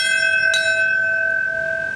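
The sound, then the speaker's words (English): A single bell struck once during the 20th-anniversary September 11th memorial ceremony in Lower Manhattan, marking the moment the World Trade Center's South Tower collapsed; its bright metallic tone rings on in a long, steady hum that slowly fades. No voices, just the resonant chime hanging in the air. “A bell ringing during the ceremony in Lower Manhattan a few minutes ago.”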